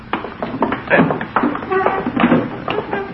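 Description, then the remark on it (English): A heavy armchair is shuffled across the floor and moved back against a wall, with a series of irregular bumps and knocks, steady rustling and scraping filling the few seconds between thuds. “Move that armchair back against the wall.”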